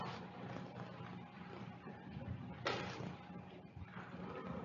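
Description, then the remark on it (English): A sharp bang from the Disneyland fireworks cracks out partway through, followed later by a softer thump, both set against a steady, rumbling background hiss with no talking. “I'm hearing the Disneyland fireworks, and I kept thinking it was my microphone.”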